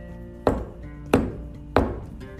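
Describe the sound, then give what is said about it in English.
Three sharp, hollow knocks on a tree trunk, evenly spaced about two-thirds of a second apart, each a loud woody thud with a brief decay, with no voices. “And the unicorn walked over to the tree and did three knocks.”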